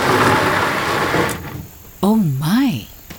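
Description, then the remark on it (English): A rough, loud motorbike engine rattles for just over a second, then drops away. A brief wavering voiced sound rises and falls in pitch over quieter background noise. “Have you never been on a motorbike?”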